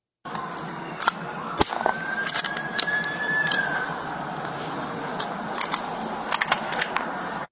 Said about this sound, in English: I don't know about y'all, but the sound of a gun racking is like ASMR. I can hear that on repeat all day and go to bed. Like a newborn baby, I'll be asleep